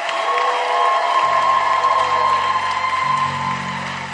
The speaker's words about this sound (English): Clap for them as they go back to their seats. Are you clapping for them?